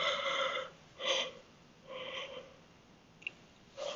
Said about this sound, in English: Oh, God, I have to stop yawning.